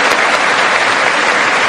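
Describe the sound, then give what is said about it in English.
Loud, sustained applause from a large crowd in a legislative chamber of Congress, a dense and steady wash of many hands clapping at once with no individual claps standing out and no voices, including Speaker Nancy Pelosi's applause after President Trump proposed rejecting the politics of revenge. “But Nancy Pelosi became the queen of condescending applause after President Trump proposed rejecting the politics of revenge and embracing the common good.”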